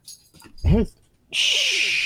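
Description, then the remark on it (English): A dog gives one short, loud, rising-and-falling yip amid faint whimpering, followed by a steady bright rustling or jangling noise that runs to the end. “I'm guessing that's one of my dogs, not one of yours.”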